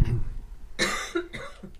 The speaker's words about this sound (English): Yeah, tis the season, folks. Yeah. Sorry. Yeah, we're going to fix coughing soon.